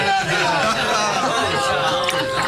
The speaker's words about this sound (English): That bugle and the cheering. The city is in an uproar.